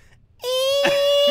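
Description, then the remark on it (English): A person does an impression of Gollum's voice with one sustained, high, strained wail. It begins abruptly after a moment of silence and holds a steady pitch at a loud level until the end. “Yeah, I got a really solid impression of Gollum.”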